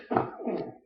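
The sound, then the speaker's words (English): A single sneeze bursts out with a sharp, loud onset, then trails off into a breathy, fading exhale under a second. “Bless you.”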